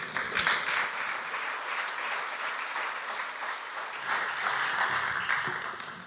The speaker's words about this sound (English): And he's going to be speaking to us here, and so if you give him a round of applause, it'd be great.